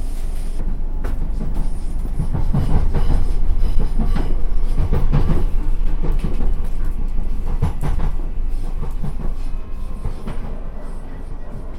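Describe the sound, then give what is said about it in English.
A train approaching its final stop, Windsor and Eton Riverside, rolls steadily along the rails as a loud, continuous low rumble broken by faint rhythmic clacks of the wheels passing over track joints. “This train is now approaching its final stop, Windsor and Eaton Riverside.”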